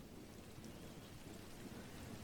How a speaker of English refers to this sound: This meditation is designed to help you relax using the sound of rain.